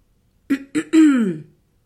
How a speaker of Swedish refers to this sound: Madame Spangle harklade sig.